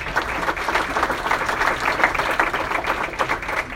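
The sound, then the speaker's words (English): An audience claps steadily, a dense wash of many overlapping hand claps at an even, fairly loud level with no voices over it. “Claps.”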